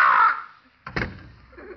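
crow cawing

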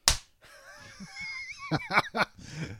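hand clap

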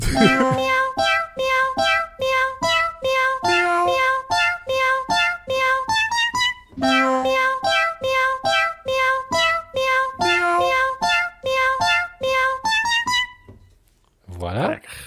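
cats meowing

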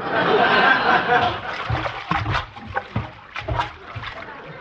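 water sloshing

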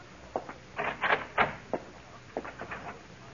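footsteps

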